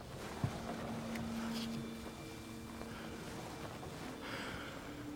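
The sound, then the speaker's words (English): A boat out of control churns through water, swinging to port, with a steady roar of engine and rushing spray, a low droning tone sounding for a second or two, then fading, with no voices. “She's out of control. Swinging to port.”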